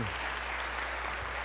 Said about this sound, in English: The building has been ordered. So let's give God a hand clap of praise for that.